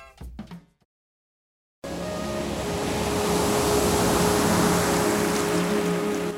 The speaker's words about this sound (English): Luscious ocean waves, peaceful music, inviting us to spend time together in the quiet.